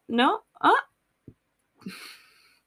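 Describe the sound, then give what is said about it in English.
A rough burp rumbles out near the end, breathy and trailing off, after two short voiced vocal bursts and a soft thump. “Burp time.”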